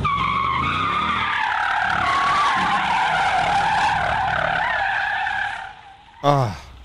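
Tires of a heavy Jeep skid loudly on concrete in one long, wavering squeal lasting several seconds, then cut off, followed by a brief sharp chirp as the wheels grab again.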